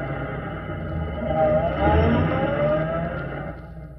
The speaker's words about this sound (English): That car that just drew up.